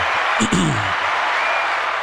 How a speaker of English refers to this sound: It's the longest clap.